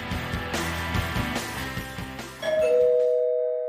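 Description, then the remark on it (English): A doorbell rings with a two-tone chime, its clear ringing tones lingering and fading out, following a busy stretch of music with no talking. “Someone's at the door.”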